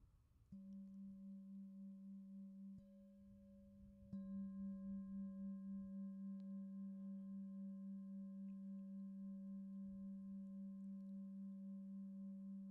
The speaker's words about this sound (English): And so what I'll do is sound the bell again.